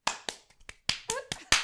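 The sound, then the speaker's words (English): A small group claps briefly, about eight sharp, uneven slaps in under two seconds, with a short vocal sound mixed in partway through. “Let's clap ourselves.”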